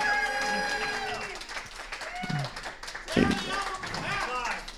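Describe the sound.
An audience applauds steadily for several seconds, the clapping mixed with loud cheering and high whooping voices, swelling briefly near the end.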